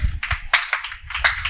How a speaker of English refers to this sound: Everybody, let's have a little hand clap